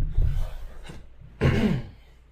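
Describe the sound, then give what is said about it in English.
Someone clears their throat a few times: a low rumbling rasp, a quick short hack, then a louder, harsher clearing that trails off. No speech. “I had to clear my throat a few times.”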